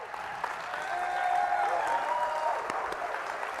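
An audience, standing on their feet, applauds a pastor steadily, a dense wash of clapping that holds at a fairly loud level throughout, with a few cheers and whoops rising faintly above it.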